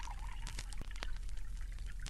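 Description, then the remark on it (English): Nectar pours steadily into a cup for a couple of seconds, a soft continuous splashing stream with a few small drips and clinks, no voices present. “Please, drink of our nectar.”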